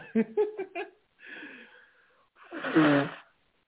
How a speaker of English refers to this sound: Give me 1 second. Let me blow my nose.